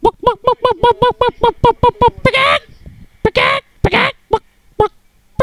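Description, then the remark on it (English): A chicken clucks in a rapid, evenly spaced run of about a dozen short calls, then breaks into a few harsher, louder squawks with brief pauses between them. “Look at the mannerisms of the chicken.”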